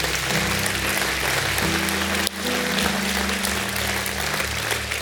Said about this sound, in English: How about you this morning? Can we give God a great hand clap of praise this morning?